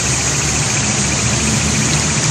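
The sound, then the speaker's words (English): A fire truck arriving, its heavy engine rumbling and idling with a steady low drone and a broad hiss of noise over it, holding an even loudness throughout, with no siren or voices. “Oh shit, here comes another one. Here comes a fire truck.”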